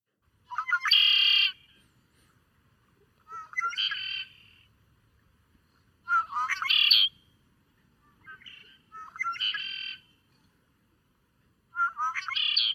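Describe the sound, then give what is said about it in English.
A male red-winged blackbird sings five times, each loud, buzzy phrase a short burst of notes ending in a trill, repeated every few seconds against a quiet background. “Let me play the call for you. So this is a male red-winged blackbird.”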